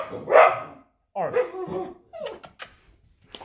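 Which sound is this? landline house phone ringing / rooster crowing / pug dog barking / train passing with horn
pug dog barking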